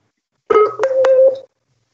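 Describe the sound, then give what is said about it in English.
A short electronic beeping tone from a Skype call disconnecting, a steady mid-pitched telephone-style sound lasting about a second, shifting pitch slightly partway through with a couple of faint clicks. No one speaks. “I hear beeping. Did we lose Shay? I was disconnected for a hot second.”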